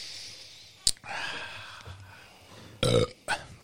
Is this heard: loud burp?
yes